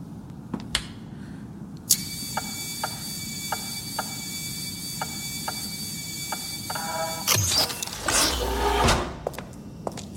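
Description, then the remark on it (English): A mechanical door whirs open, a steady high whine with evenly spaced clicks for several seconds, then a louder hissing slide and low thud as it finishes. No one speaks. “Just the door, right?”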